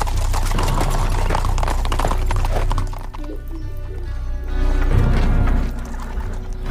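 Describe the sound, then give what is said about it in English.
Black horses' hooves clip-clop steadily on a hard surface, ridden by riders in costumes and helmets, a busy run of overlapping strikes over a low rumbling background, with a horse whinnying briefly midway. “It looks like weeds growing out of their helmet and these black horses.”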